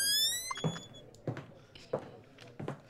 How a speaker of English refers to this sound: The door creaking opens, my favorite.